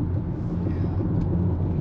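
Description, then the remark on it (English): Steady low rumble of a car being driven to a car wash in light traffic, heard from inside the cabin, with constant road and engine noise filling the background at an even level throughout. “Yeah, that's why we got some focusing on the driving.”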